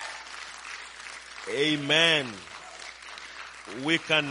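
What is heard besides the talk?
audience hand clapping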